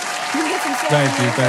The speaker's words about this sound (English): Everybody give him a round of applause.